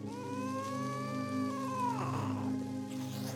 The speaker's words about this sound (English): There seems to be an angry cat in the tree, which doesn't seem like much trouble until you start to ask questions about the situation. Why is it angry? Is it being taunted by someone or something?